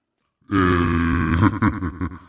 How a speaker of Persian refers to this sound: آقا خواستی گوز بدی ما رو خبر کن. باشه باشه خبر میکنم.